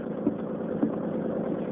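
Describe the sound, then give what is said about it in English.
A motorboat engine drones steadily and continuously at a moderate level as the boat runs at speed, a low, rumbling hum with a couple of faint knocks, and no voices. “There's nothing out of Cod Harbor can outrun this boat of mine.”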